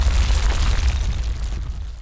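Deep, rumbling thunder roars steadily for about two seconds over a great shaking mountain under a thick cloud, with lightning, a heavy low-pitched boom with a rough, crackling texture that slowly eases off. No voices are heard.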